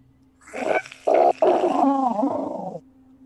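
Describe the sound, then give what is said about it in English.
During a tabletop role-playing game, a person voices a tentacled monster screaming with writhing tentacles: a few rough guttural bursts swelling into a long, wavering snarl with a warbling pitch, loud and alone against a faint steady hum. “And I think I got it this time when I growled, but maybe nobody heard.”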